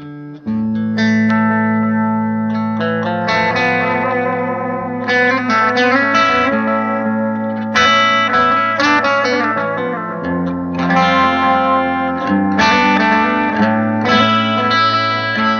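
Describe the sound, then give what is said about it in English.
A guitar played through an Analog Man ARD X20 analog delay pedal with the mix set high, its notes and chords repeating and trailing off in soft, warm, tape-like echoes. Steady and fairly loud throughout, with no voices. “It's very like sort of a tape echo almost.”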